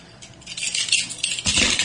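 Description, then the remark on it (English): Dice clatter and rattle inside a dice bag that also holds a knife, in a couple of bright jostling shakes that end in a fuller, louder rustle of clicking dice. No one speaks. “I have a knife in my dice bag, which you can tell.”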